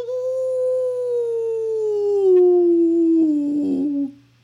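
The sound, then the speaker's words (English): A dog lets out one long, loud howl lasting about four seconds, its pitch sliding slowly downward and breaking into a rougher quaver just before it stops. “Okay, some of the hot hair felt good on my ears, I will admit, but for sure, the sound of the hair dryer hurt my ears, and if I had vocal cords, I would have howled like this.”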